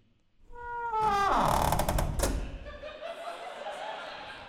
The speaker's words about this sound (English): The janitor grinned and shook his head as he disappeared, allowing the creaky classroom door to slowly shut behind him.